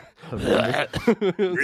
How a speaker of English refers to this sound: To keep apologizing for me coughing. I am sorry. I'm coughing it directly into a mic.